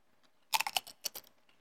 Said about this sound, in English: Give me that crunch. I want the ASMR. Hold on, I'm sorry. Give me that crunch. Sponsorship from Doritos. This is sponsored by Doritos.